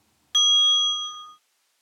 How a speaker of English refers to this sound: And as I said, I'm just going to get one ding with the bell and then we'll just continue to breathe in and out.